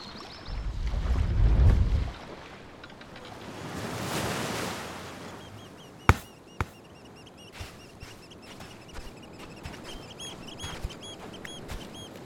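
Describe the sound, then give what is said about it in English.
A boat rushes at full speed through choppy shallow water, a low engine rumble giving way to a loud surging splash, then scattered sharp knocks and slaps of water against the hull. “Full speed ahead! We're in shallow water.”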